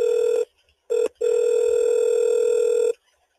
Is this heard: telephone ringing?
yes